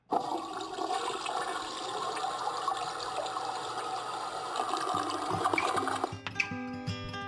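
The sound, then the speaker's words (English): A toilet flushes with a loud, steady rush of water lasting about six seconds, then breaks off abruptly as some tonal sounds take over. “I flushed that sucker goodbye.”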